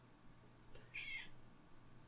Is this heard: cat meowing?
yes